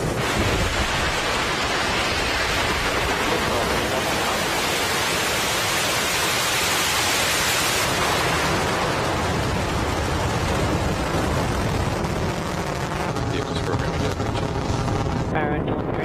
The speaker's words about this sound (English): Just over T plus 1 minute into flight. We're hearing nominal callouts. The Merlin engines have throttled down in preparation for passing through the period of maximum dynamic pressure.